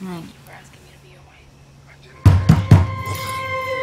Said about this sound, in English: It's knocking like the police.